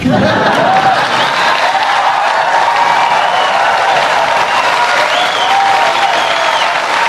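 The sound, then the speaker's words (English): A large audience applauds steadily, a dense wash of many hands clapping at an even loudness throughout, with some faint cheering mixed in. “But, and that gets a lot of applause here.”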